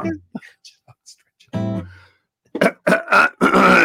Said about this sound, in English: Excuse me, I just had to clear my throat there.